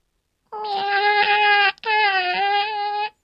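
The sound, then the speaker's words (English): A human voice imitates a cat's meow, the meow meaning 'I need help wiping': two long, drawn-out, whiny meows back to back with a tiny break between them, loud, with no other sounds around. “Okay, this is the most important meow for me, and it's the I need help wiping meow.”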